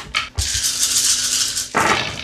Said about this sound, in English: Roll 14 dice. And 10s don't count as 2.